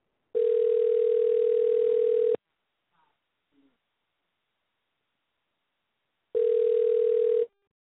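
A telephone ringback tone heard while placing a call: a steady, clear electronic tone rings for about two seconds, pauses for several seconds, then rings again. A faint brief sound occurs during the pause.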